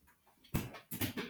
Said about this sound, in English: Harry's about to bark. Come here, Harry. Come here. Harry, come here. Come here.